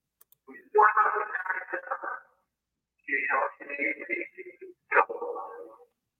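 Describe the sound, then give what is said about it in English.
An EVP (electronic voice phenomenon) recording, the 'Help' EVP, plays: a distorted, unintelligible voice-like sound in three short bursts, smeared by a strong echo that makes each phrase ring and blur, with quiet gaps between. “I do hear that echo that you're talking about. It's a strong echo.”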